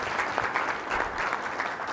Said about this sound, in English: So if you can, please give a round of applause to my co-host